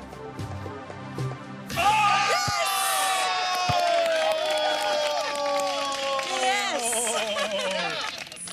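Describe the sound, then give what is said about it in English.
A group bursts into loud cheering and high-pitched whooping to encourage a woman taking blindfolded basketball shots, voices overlapping and rising and falling in excited shouts that carry on steadily for several seconds after a sudden start. “Wow, by making her think she sank those blindfolded shots, and by cheering and giving her positive reinforcement, it's almost like we hacked her self-confidence and got her to believe more in her natural abilities.”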